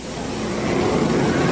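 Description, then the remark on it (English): A Ferrari racing sports car's engine roars with a steady droning pitch during a race in the rain, growing steadily louder as it approaches over a wash of broad noise, with no voices. “Rodriguez of Mexico City, a great driver in a Ferrari sports car”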